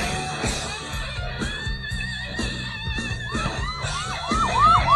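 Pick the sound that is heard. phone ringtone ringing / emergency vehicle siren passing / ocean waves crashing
emergency vehicle siren passing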